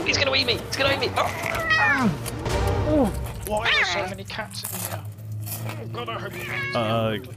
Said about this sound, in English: Why are there so many cats in here?